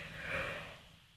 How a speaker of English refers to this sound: Oh, pardon me for that big yawn.